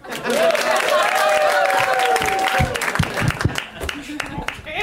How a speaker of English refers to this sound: Okay, here's a round of applause. Men deserve it.